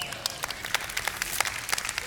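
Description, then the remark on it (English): A crowd claps steadily for about two seconds, many overlapping hand claps forming a dense, moderately loud patter with no voices over it. “See, like that was not the clap we were getting during worship.”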